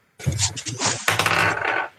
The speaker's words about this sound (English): Can you roll a D12 for me?